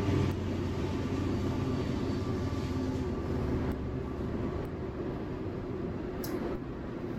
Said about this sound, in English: And here comes a train, so.